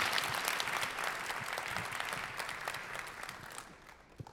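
Audience applause at a San Francisco Ballet Meet the Artist event, a dense patter of many hands clapping steadily at moderate loudness, gradually thinning and fading toward the end with a few scattered claps.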